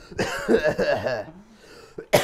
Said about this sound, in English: So let me just cough in everyone's ear right there.